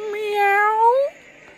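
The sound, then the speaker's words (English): A single drawn-out cat meow, clear, its pitch slowly rising before it cuts off, followed by quiet. “Filch owned a cat called Mrs.”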